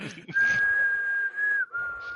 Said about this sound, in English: What are you whistling? It's from West Side Story.